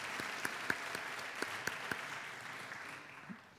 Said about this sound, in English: Again, let's give them all a big round of applause.